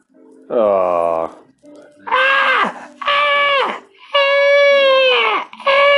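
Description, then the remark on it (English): A voice imitates a baby screaming from a pillowcase in a dumpster: five loud, wavering wails in quick succession, each rising then sagging in pitch, strained, with short gaps between. “In this case, it was a screaming pillowcase coming from a dumpster across the”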